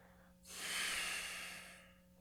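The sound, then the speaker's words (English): A single long, airy exhale out of the belly during a two-part breathing exercise swells up and fades out over about a second and a half, soft, with no talking around it. “And when we feel our heart become fulfilled and filled, we will then inhale into our belly as well. Feel the belly expanding and exhale out of the belly.”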